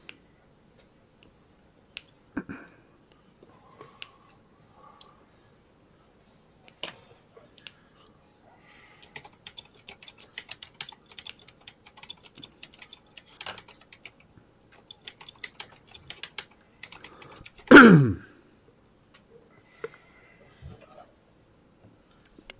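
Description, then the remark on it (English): Irregular bursts of keyboard typing, soft quick key clicks in uneven clusters, with a brief louder thump near the end and no talking, as a message is typed. “I don't think she can hear us, so I typed it to her.”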